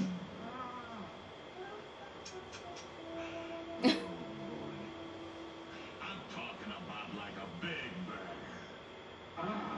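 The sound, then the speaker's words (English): A 60-pound child gives a rough, growly vocal imitation of a bear, with one sharp loud burst partway through and strained throaty sounds around it, over steady background hiss. “Now give me a big bear growl. Scare me.”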